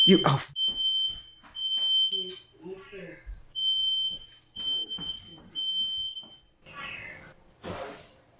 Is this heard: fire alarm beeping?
yes